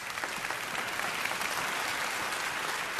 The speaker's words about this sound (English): So we can clap at that.